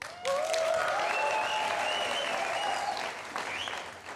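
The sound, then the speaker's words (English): A church audience at a morning service breaks into sustained applause, a dense, steady clatter of many hands clapping with a few whoops and cheers rising above it, holding for about four seconds before thinning out. “Yeah, I had to ask for my own applause. Should we try again just so we get warm and alive this morning?”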